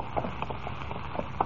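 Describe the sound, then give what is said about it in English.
Horse hooves clip-clop at a steady walking pace as two riders ride horses through mountain country, a series of moderate knocks over a dull background rumble, with no voices. “Jimmy Olsen, accompanied by Dusty, Rawson's henchman, rides on toward the fatal danger Rawson has planned for him”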